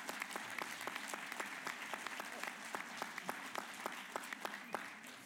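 An audience applauds steadily, many hands clapping in a dense, continuous patter with sharp individual claps standing out, sustained for several seconds at a moderate distance.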